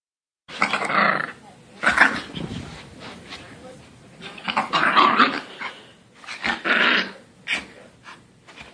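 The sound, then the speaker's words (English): A frightened stray dog, wedged under the gas pedal of a car, growls and snarls in several loud, rough bursts, with harsh snaps between them and short pauses, sounding agitated and defensive. “She wedged herself under the gas pedal, growling and snapping in an effort to protect herself from her assailant.”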